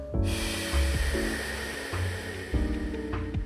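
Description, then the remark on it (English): A long, forceful exhale through the mouth during a guided breathing exercise, a steady breathy rush lasting a few seconds, fairly loud over soft sustained background tones. “Exhale, mouth.”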